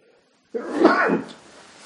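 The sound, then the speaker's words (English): A single sharp sneeze bursts out abruptly after a moment of silence, loud, trailing off into a soft breathy tail with no talking. “I just sneezed.”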